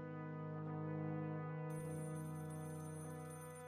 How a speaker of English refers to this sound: An hour later, as witnessed by the tenant of Flat 6, who had heard the phone ringing through the wafer-thin walls for several minutes